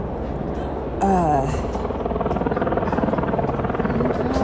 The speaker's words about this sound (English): Helicopter's loud.